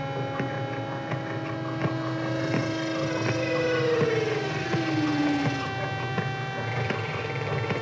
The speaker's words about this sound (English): All right, let's bring the whales in. Let's bring the whales in.